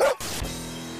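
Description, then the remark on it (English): A person barks like a dog, loud: a quick sharp yelp, then a rougher drawn-out woof that trails into a sustained growly tone. “In that case, call the kennel, because I'm a dog.”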